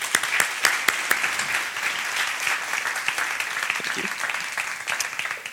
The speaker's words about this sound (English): So please, a huge round of applause